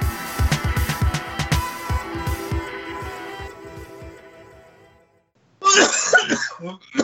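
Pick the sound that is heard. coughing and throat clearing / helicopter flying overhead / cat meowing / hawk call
coughing and throat clearing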